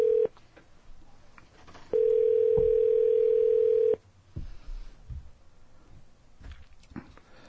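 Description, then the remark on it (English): A phone's ringback tone: a short beep, then one long steady electronic tone lasting about two seconds, followed by quiet handling noises and faint clicks. “Yeah, just call it up and see what's up.”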